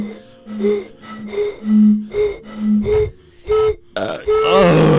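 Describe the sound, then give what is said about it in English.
A voice imitates an owl with a rhythmic series of low, hollow hoots, about half a dozen in close succession, ending in a rougher, breathier call. It's fairly loud, with no other talk. “It sounds like an owl because it's night owl.”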